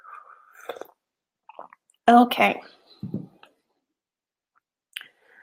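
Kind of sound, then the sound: food or drink, sipping hot tea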